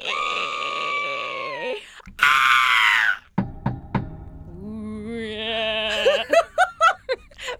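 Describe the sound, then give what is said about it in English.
A voice imitates a sheep's bleat by mouth with a long wavering, nasal cry, followed by harsh screechy bursts and a string of short choppy vocal squawks, loud. “That was like a sheep.”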